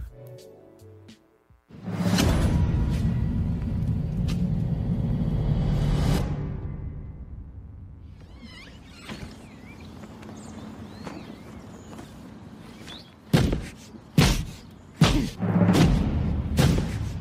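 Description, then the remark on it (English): A very large man, 6'5" tall, smashes a car by hand: a loud, sustained crashing burst of metal, a quieter stretch, then several sharp, heavy thuds and bangs in quick succession, with no talking. “This is him just beating the shit out of the car.”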